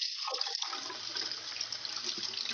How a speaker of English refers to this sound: No, they turned our water off, so I'm running the water. Because it's got all that, like, rusty pipe shit in it, you know?